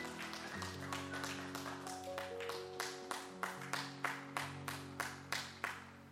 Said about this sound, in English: Somebody shout amen. Give the Lord a hand clap of praise on the way to your seat.